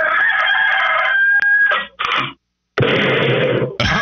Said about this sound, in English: Now that's a rooster. That is. That is not a pigeon or whatever you did last week. That's a damn rooster if I've ever heard one. Yeah. That's a rooster.